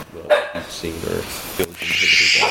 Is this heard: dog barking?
yes